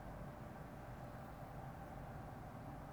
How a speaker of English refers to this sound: A man is driving by in his work truck.